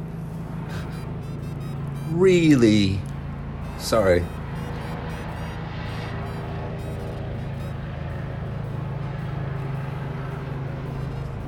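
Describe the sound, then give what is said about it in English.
A helicopter flies close overhead near Taksim Square, its steady, low droning rumble running loud through the whole stretch while a person speaks briefly over it. “Wow, that helicopter is...”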